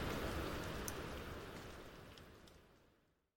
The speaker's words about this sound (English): You're listening to the sound of Winter Waterfall.